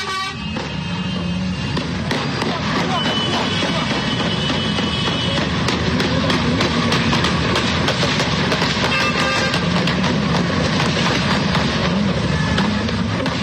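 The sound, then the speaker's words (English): Rapid, repeated sharp cracks of gunfire from two Hamas members ring out at a bus stop in Jerusalem over a loud, steady roar of street traffic, with a vehicle horn sounding amid the din. “You hear all that gunfire? I hear the gunfire.”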